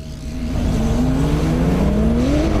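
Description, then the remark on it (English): A naturally aspirated sports car engine accelerates hard, its steady loud drone rising smoothly in pitch as it pulls through the revs, continuous with no voices. “I like naturally aspirated because the way it pulls at a certain time”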